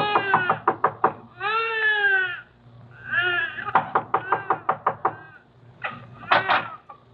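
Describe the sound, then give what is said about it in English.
Rapid bursts of sharp knocking on a tenement room door come in several quick runs, fairly loud, interleaved with drawn-out, wavering bleat-like cries. “Then you knock on a door that opens into a room where Tommy Mannin was born.”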